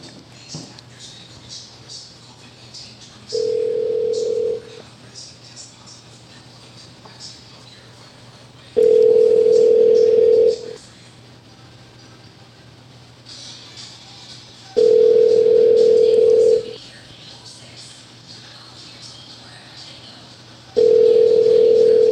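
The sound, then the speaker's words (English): A telephone line tone sounds as a call is being placed, in four steady, mid-pitched bursts, each lasting one to two seconds, with gaps of several seconds between them over a faint background hum. “Ready to call”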